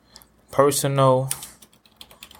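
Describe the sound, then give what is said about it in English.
Light, rapid clicking of computer keys as "personal trainer" is typed into a YouTube search, soft, with a brief voiced murmur in the middle before the tapping continues in an uneven patter. “I'm typing it. You can probably hear the keys.”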